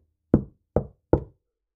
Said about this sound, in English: She knocked on the door and hoped that whoever lived there would give her some of the delicious-smelling food and help her find the way home.